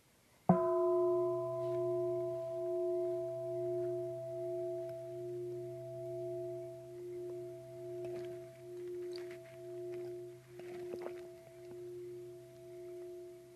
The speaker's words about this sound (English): Now just notice the moment when the sound of the bell vanishes, to notice the moment when things vanish.